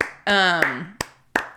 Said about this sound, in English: Claps. The crowd goes wild.